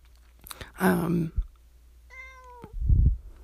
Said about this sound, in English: And there's my cat.